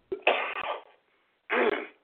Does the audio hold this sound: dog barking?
no